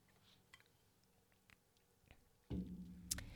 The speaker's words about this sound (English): Whew. Gonna have a sip of water.